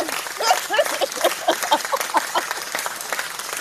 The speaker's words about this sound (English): If nobody will clap for me, I'm going to clap for myself.